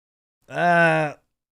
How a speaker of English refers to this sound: Excuse me. Woo-wee! How many of you did I get with that yawn?